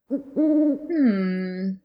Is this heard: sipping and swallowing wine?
no